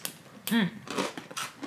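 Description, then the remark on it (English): Crisp, crackly crunches from a slightly sweet sesame cracker being bitten and chewed, several sharp dry bursts in quick succession, with a brief hummed voice between them. “Got a good crunch?”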